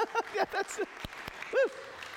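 A church audience claps in a brief burst of applause, with a few sharp claps standing out, while voices rise and fall in short cheering whoops over the clapping.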